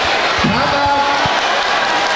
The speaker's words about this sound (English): It's a very raucous and loud crowd. This is standing room only.